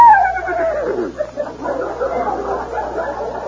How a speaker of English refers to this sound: Here's my faithful horse, Silverware. Silverware, say howdy to the nice people.